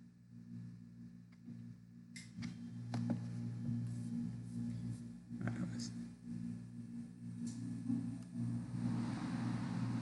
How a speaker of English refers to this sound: Do you hear the AC? It's pretty loud, right?